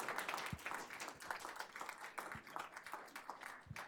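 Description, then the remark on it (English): A crowd applauds steadily after a call for their Illinois city to be the best city in the world, many overlapping claps forming a dense, continuous patter with no voices over it, holding at an even level throughout. “Let's clap that up.”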